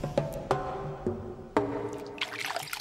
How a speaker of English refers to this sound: In the basement, my brother knows the drill. He cleans shit out of his tidy whities using cold toilet water.